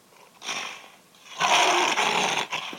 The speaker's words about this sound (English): It's a lion. Yes, that was a lion.